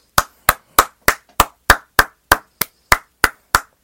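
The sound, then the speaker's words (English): A single pair of hands claps about a dozen times in a steady, even rhythm to congratulate a baseball player on an accomplishment, each clap sharp with a short ring, and no one speaks. “As always, we should clap it up on the podcast.”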